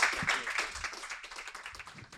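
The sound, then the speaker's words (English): A crowd applauding for Anthony Lowenstein, dense overlapping claps forming a steady wash of sound that gradually tapers off, moderately loud. “So if we can have a round of applause for Anthony Lowenstein.”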